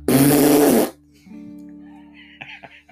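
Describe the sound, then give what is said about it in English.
A loud, blaring fart sound effect from a phone bursts out for nearly a second with a buzzy, flapping rasp, then cuts off abruptly, followed by a faint hum and soft background murmuring. “love to design a QR code that goes very quickly and with no delay to causing your phone to make a really inordinately loud fart noise.”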